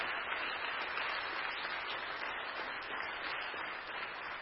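A church audience applauds together to thank the media and worship team, a steady wash of many hands clapping at an even level for several seconds, with no voices rising above it.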